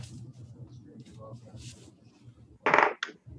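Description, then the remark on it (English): Low murmuring voices run underneath, then a die is rolled for initiative in a tabletop game and clatters sharply across a hard surface in a short bright rattle, ending with one quick final click as it lands on a 2. “I'm using the good die now. Not good. She said as she rolled a 2.”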